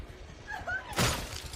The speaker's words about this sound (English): Now, the hits on the glass are actually the stunt girl, because she's actually using the force of her body hitting the glass to break it. It wasn't pre-broken or anything like that. We wanted it to be real, so pretty brutal.